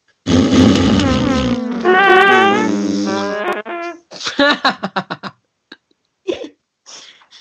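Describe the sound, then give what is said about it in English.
A voice blows a long, loud, buzzy raspberry imitating a fart, its pitch wobbling up and down, then breaks into a series of short sputtering pops and a few faint trailing spurts. “Old mum's fart.”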